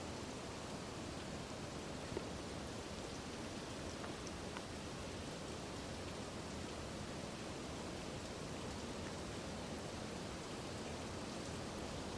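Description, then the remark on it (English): Steady rain falls in a dense, continuous hiss, with soft scattered patters mixed into the wash. It stays even and unbroken throughout, with no voices present. “And not just the rain, every sound.”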